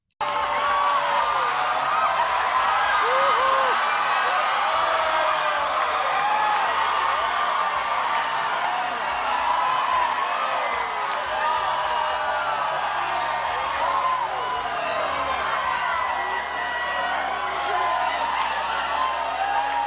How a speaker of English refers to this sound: listen to the reaction at Bethel Church. Here's the audio of the reaction as this stuff is raining down from the ceiling.